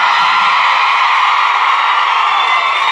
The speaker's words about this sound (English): And nothing will live up to it. The screaming was incredible. Yeah. And it's in a fully carpeted conference room.